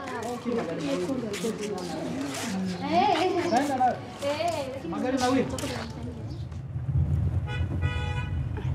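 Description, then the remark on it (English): Street ambience outside the Kilimanjaro hospital as a woman walks gingerly to a taxi: car horns tooting and honking, mixed with indistinct voices and a low engine rumble that grows as a vehicle idles. “She's walking gingerly to the taxi being linked by her sister-in-law.”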